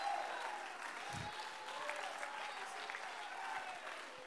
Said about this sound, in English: Come on and clap.